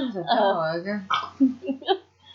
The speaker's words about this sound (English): burping in the background. It sounded like a dog bark. It sounded terrifying. Fierce.